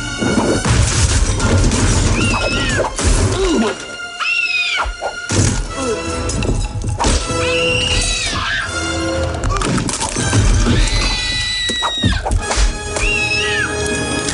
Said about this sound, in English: Because you know what she's doing is she's like making it sound like she's getting beat up. Like, that's why she's screaming. Yeah, she's screaming to make it sound like she's getting beat up.